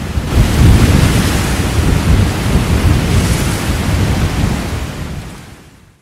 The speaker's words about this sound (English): This storm is one for the books.